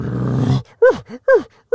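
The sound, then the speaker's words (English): A voice imitates an elk bugle: a low, rough growl followed by three short, loud, squealing whoops that rise and then fall, repeated in quick succession. “And it turns out it was just an elk that had the weirdest bugle I've ever heard.”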